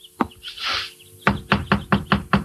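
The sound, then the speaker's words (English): A single knock, then a pause and a brisk run of six hard knocks on the wooden front door of a frame house, loud with an even rhythm, and no voices. “I knocked on the door, and after a while a hall light went on and someone was coming for the front door.”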